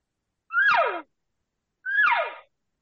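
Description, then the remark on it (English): Two mewing elk cow calls blown through a tube used as a location bugle to amplify them, each a half-second rising-then-falling nasal squeal with a raspy, hollow resonance, separated by a short pause, loud. “Cow sound through the tube.”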